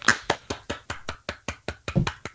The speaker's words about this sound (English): That is me clapping, obviously, because the Ducks have stopped the Islanders' 7-game point streak.